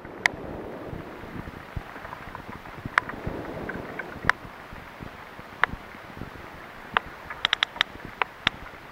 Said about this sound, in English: So in that recording, you're hearing multiple whales clicking, and specifically, many of those whales are producing codas, again, those stereotyped patterns of clicks.